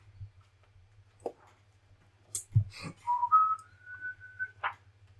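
A person whistles a brief, clear tune of a few sustained notes stepping upward, preceded by scattered clicks and knocks over a low steady hum.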